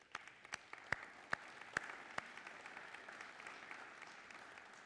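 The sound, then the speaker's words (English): A church audience applauds together to thank those who make the place welcoming: a steady wash of many hands clapping, with a few sharp, louder individual claps popping out at a regular beat during the first couple of seconds. “So I just want to, let's together just clap and thank those.”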